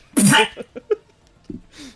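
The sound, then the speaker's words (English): Someone imitates a character coughing up blood after a crossbow bolt pierces his chest: one loud, harsh burst followed by a few short sputtering gags and a final rasping breath, with no other talk. “will cough up blood immediately, just...”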